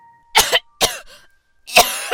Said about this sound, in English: Even more coughing. Coughing up blood.